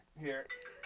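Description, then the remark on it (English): A mobile phone rings with a short electronic ringtone melody, a few bright tones stepping between pitches, fairly loud and over in under a second. “I forgot to turn my phone off, too.”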